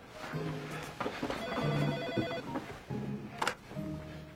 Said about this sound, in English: Don't answer that. It could be Tracy. But I have to answer the phones.